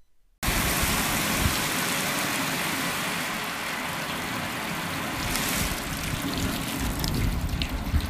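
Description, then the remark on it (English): A steady rush of running water from an open-air shower on a balcony starts abruptly after a brief silence and continues as an unbroken hiss and patter to the end, with no voices. “Colette dives into a pomegranate bubble bath, soaking the bathroom, while Margot uses Dr. Alchama's open-air shower on the balcony.”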